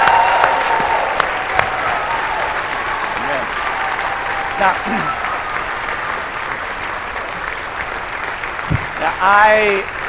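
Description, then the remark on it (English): A church audience, during a sermon, bursts into sustained applause thanking a church leader for her leadership, a dense steady wash of clapping with scattered cheers and whoops rising above it, continuing strongly for the full stretch. “So tomorrow morning or tonight, Anna's going to listen to this sermon, and I want her to hear you give her an applause right now, thanking her for the leadership that she brings.”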